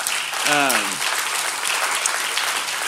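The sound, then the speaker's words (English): An audience at a church (LCF) applauds with steady, dense clapping throughout, celebrating money raised to give 1,800 people a 40-year water solution, while a voice briefly calls out over it near the start. “Our church, specifically, there were 129 people that signed up here from LCF, and we raised just under $90,000, which is 1,800 individuals who, yeah, we can applaud that.”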